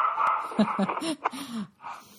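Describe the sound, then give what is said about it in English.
Dogs bark and whimper in a quick run of short, high yips and whiny cries, moderately loud, over a low background hiss. “I have crazy dogs. You'll have to forgive me.”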